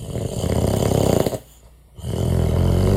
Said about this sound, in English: If I was to play this and tell you that this is a recording of Dad snoring back in the day, would you believe me? So here's the sound.